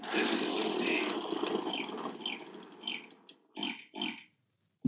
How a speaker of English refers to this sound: So let us spin the wheel of impressions.